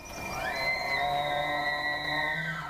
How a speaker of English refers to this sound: Roosevelt elk are the largest of the four surviving subspecies in North America. As they enter their annual mating season, bull elk make these elaborate sounds to show their dominance over other members of the herd and secure mates.